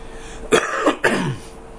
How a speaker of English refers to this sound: See, my cough is different over the years.